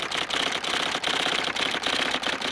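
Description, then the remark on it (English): Rapid, steady typing on an IBM Selectric electric typewriter, a dense mechanical clatter broken by short regular pauses, fairly loud with no voices. “Since they were electric typewriters, Selectric typewriters made by IBM, they did qualify for inspection.”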